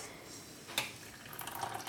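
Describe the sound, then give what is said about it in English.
Whey from skim milk, poured from a pot, trickles quietly through a strainer, a faint watery dribble that swells toward the end, preceded by one brief sharp tap. No one speaks. “And there is our whey draining out.”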